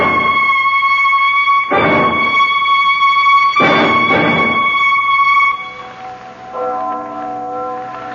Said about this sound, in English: That bell. I don't know if I ever want to hear a bell in my life again. That's only the church bell.